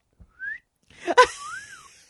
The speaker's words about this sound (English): I would do the whistle.